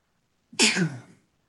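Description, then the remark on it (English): A single sharp sneeze bursts out, a quick breathy intake followed by an explosive hissing release that fades within about half a second, with no talking around it. “Bless you.”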